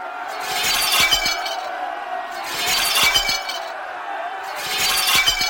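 Window glass of government buildings shatters repeatedly as a group throws stones and other objects after a protest: three loud crashing bursts roughly every two seconds, each followed by tinkling shards falling, prominent with no voices.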